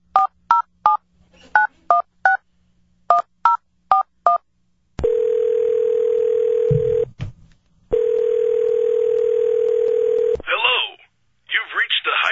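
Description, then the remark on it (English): A phone is used to dial a hotline: a rapid series of touch-tone dialing beeps in short bursts, followed by two long, steady telephone tones separated by a brief gap, then a voice comes on over the line. “All right, bring my phone up so I can dial.”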